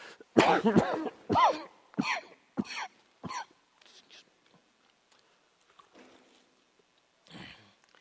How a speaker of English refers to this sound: Excuse me, I have a bad cough. We'll get through this. I'll live and so will you, okay?